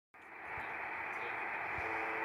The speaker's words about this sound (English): The name of the station? MDZHB. Oh, I found we can listen to it live.